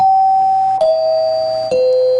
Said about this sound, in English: And there it is. That is, of course, I remember that chime. Now, that's a fair chime as well.